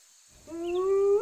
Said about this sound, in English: You see the other wolf coming towards you guys, starting to snarl. The wolf with the emerald eye is definitely starting to snap at Jura.